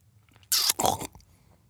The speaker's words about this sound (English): Uh-oh. … accidentally slurped up the slug. She immediately was set into a panic and tried her best to cough up the slug.